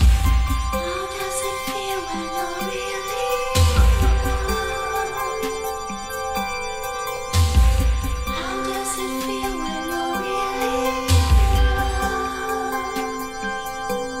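An upbeat instrumental theme song for a video, built from bright, ringing electronic tones like an alarm clock, with a bouncy melody over heavy bass hits that repeat every few seconds. No one speaks.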